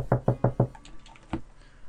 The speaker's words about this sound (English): And you knock on the door.